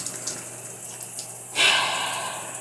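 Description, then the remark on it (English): Steady water hiss, like a shower running, holds for a moment and then swells louder and brighter partway through as the spray grows stronger, continuing with no talking. “So much so that I couldn't even get out this shower just yet.”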